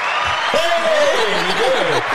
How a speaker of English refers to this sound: The applause button. Oh, we have an applause?